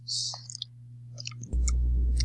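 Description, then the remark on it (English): Dinosaur dice, with a Tyrannosaurus on the number one spot, clatter in a quick burst of bright clicks, then a few scattered taps follow before a duller low thump and steady background rumble take over. “Oddly enough, the dice I picked, the number one spot is a Tyrannosaurus.”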